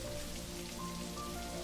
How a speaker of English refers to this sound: the wind picks up and then the rain begins. First, a soft drizzle, but then quickly a torrent as you are drenched. Even your thick woolen coat cannot protect you from this much rain as you make your way across the heath.